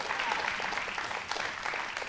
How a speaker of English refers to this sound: Give God a big hand clap of praise this morning, amen?